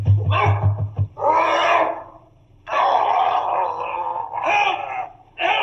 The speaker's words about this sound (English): Mr. Rucastle, let loose the dog! He'll kill him!